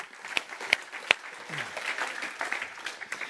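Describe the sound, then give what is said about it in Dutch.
An audience applauds, many hands clapping in a dense, steady patter at moderate volume, with a few sharper, louder claps standing out near the start. “Laten we hem daar een applaus voor geven.”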